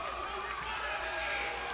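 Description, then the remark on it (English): A basketball crowd at Dave Gill Court, Ashland High School (Southern Boone High School), boos and jeers at a referee's foul call in a game against Boonville, a steady, dense wash of many voices that holds at an even loudness for the whole stretch without breaking. “You hear the crowd does not agree with that.”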